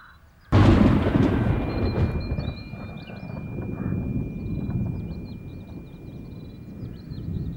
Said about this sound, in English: This bolt of lightning hit Roy directly on the top of his head.